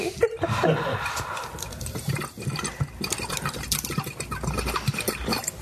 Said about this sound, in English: It's supposed to be a dry pipe, but we put water in it.